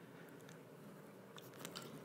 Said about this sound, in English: Sorry, water break here.